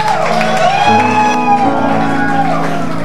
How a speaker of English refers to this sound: Wow, hallelujah. I think you can do a better hand clap than that.